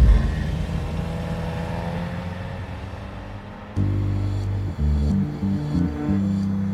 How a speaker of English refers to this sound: And I just started my car and drove away.